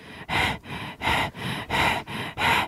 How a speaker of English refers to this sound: So this is how fast I was breathing.